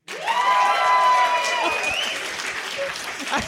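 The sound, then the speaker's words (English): A crowd votes by clapping for an A, bursting into loud, steady clapping with whoops and cheers riding over it. A few high shouts stand out before the applause thins slightly toward the end. “All right, and now clap for an A.”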